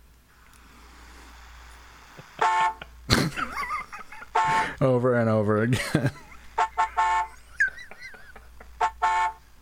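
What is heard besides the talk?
car horn honking repeatedly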